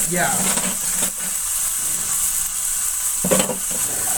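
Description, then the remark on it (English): Ground beef sizzles steadily in a frying pan, a continuous crackling hiss, with a couple of brief scraping stirs and a faint voice murmuring near the start. “That should be sizzling, right?”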